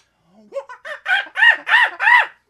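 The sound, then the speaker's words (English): A person imitates a chimpanzee call, a quick run of hooting cries that climb in pitch and grow louder into several long, strained whoops. “I can do a badass chimpanzee, but so there, I gotta get loud.”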